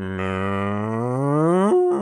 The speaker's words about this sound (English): is that a slightly large cow beside you?